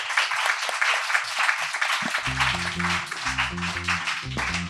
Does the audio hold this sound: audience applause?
yes